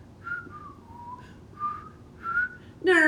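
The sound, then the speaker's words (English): Someone whistles the American national anthem, a slow melody in a string of sustained, gliding notes over a low background rumble, and a brief, louder harmonic burst cuts in at the very end. “That starts by whistling the national anthem.”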